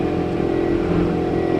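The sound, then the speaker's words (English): A loud engine revs steadily with a deep, throaty drone, sustained and unbroken, sounding like a heavy vehicle outside. No one speaks. “I think there's a tractor pull going on outside, yeah, exactly.”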